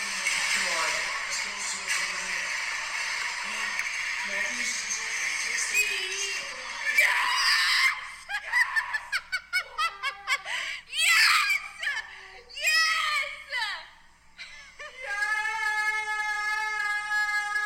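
A woman shrieks excitedly as the Toronto Maple Leafs tie up a game, loud and high-pitched, moving from a long sustained scream into rapid breathless bursts mixed with giggles, then a final drawn-out piercing squeal.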